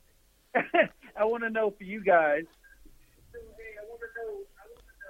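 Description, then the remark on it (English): A loud voice over a phone line, followed by a fainter, delayed copy of the audio from a caller's stream playing back a moment later, creating a lagging double-audio echo. “Oh, you hear the delay? Y'all gotta stop. I think y'all watching the YouTube.”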